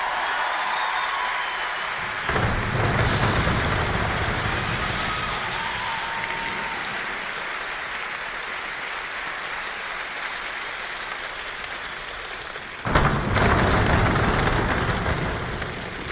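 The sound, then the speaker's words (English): About 24 people, led by a conductor, slap their legs in a dense, continuous patter that mimics heavy rain, swelling in bursts around two and thirteen seconds, loud with no talking. “So there's like, I want to say 24 people just like smacking themselves on the legs to create this rain sound.”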